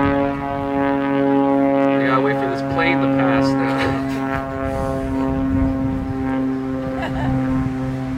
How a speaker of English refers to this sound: I was talking about planes. There's a plane.